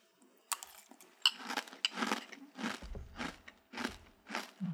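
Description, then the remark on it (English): Someone chews a mouthful of Grape Nuts cereal with milk right at the microphone, producing a steady run of about nine loud, crackly crunches spaced roughly half a second apart, with faint wet, low thuds underneath. “I want you to save that sound bit of you crunching.”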